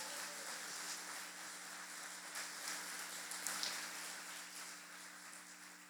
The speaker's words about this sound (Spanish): ¿Cuántos dicen aleluya? Dar un aplauso a Jesús.